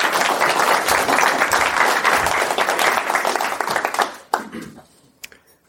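A crowd applauds steadily for about four seconds as a man is introduced and called up, a dense wash of many hands clapping, then it quickly thins out to a few scattered claps before fading.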